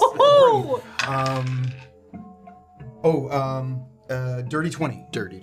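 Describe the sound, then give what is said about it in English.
A few small dice clatter and rattle across a hard tabletop with short bright clicks, while voices carry on around them; the dice are rolled in a game for an investigation check with advantage. “Just roll the dice.”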